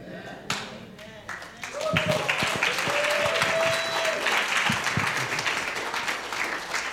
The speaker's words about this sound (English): Yeah, that's good. You can continue clapping.